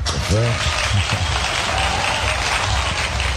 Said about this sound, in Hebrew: תנו לו כפיים. איפה כפיים?